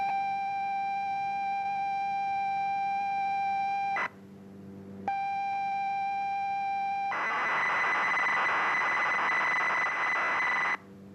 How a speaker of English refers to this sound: And there it was. It worked. Across the county, dozens of people had captured these mysterious tones onto a cassette, played that cassette into their computer, and then on their screen.